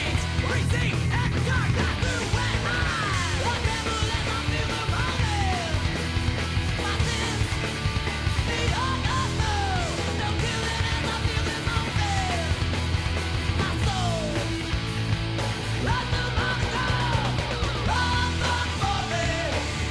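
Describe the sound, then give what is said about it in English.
A loud, dense rock song plays throughout, with driving distorted instruments and a strained, yelled male vocal whose pitch swoops and slides over the wall of sound. “Okay, so what I'll do is I'll start it from the beginning, but then I'll kind of fade out a little bit.”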